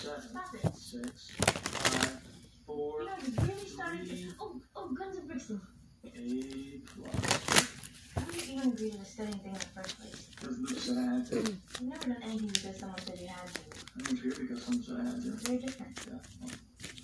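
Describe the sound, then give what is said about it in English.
Tarot cards being shuffled, with repeated crisp riffling bursts and soft rustling handling noises, while a person speaks over much of it. “I'm just going to shuffle real quickly and then we'll see what the tarot, lovely tarot cards have to say.”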